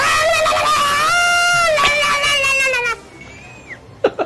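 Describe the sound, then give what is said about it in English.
A man lets out a long, loud, high-pitched battle scream lasting about three seconds, wavering and then trailing off, followed by brief quieter vocal sounds. “Now that he's given his battle scream,”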